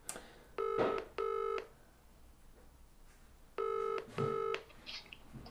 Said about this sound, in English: We've actually got a phone number, so let's try phoning this guy.